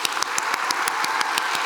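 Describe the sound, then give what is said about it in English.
A standing audience claps on a count of three, in a steady, fairly quick rhythm, sharp repeated claps over a dense wash of scattered hand noise, loud and continuous without any talking. “I want you to clap.”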